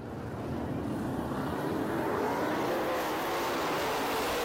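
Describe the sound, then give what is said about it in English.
Race cars accelerate at a race restart after wrecked cars were cleared from the track, a loud continuous engine roar whose pitch climbs steadily over a few seconds, with no voices. “This is when they finally blitz cleaned up the track, got all their wrecked cars off, and now it's the restart of the race, and now we're 4th.”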